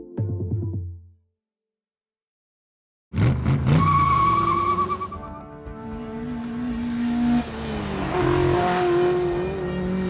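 After a brief voice and a pause, an Aston Martin driven by a man roars in loud, engine revving hard with tires squealing and skidding as it races through the Swiss Alps in a high-speed chase.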